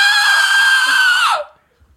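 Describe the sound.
A person imitates a banshee with a loud, sustained high-pitched shriek that holds steady for over a second, then glides downward and cuts off, leaving near silence.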